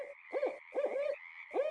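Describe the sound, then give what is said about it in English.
An owl hoots in three close, resonant bursts, the middle one longest, with a steady high hum running underneath. No one speaks. “Paul Banik's book, The Owl and the Woodpecker, includes a CD of more than 40 bird calls for identifying these species in the field.”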